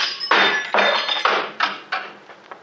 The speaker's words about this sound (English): No, I'll use the handcuffs. See if I can knock a hole in the top half of the window here.